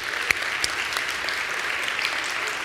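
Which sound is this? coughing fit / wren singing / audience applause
audience applause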